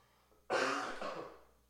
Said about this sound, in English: Sorry about that. You got to cough every now and then.